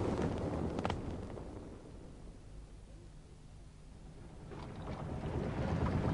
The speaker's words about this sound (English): Yes, I was expecting you gentlemen back. I've got the auxiliary engine going.